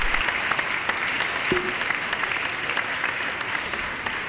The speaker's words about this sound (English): Hit a round of applause for that shit.